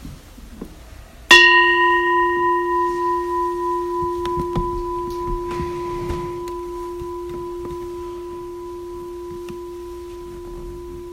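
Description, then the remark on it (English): A single meditation bell is struck once at the start of a seated meditation and rings out, its clear, steady tone shimmering with a slow pulsing waver as it fades gradually over about ten seconds in quiet. “And we'll start and end with the bell.”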